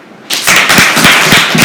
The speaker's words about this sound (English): And there's, I think there's floor stomping or floor pounding over there.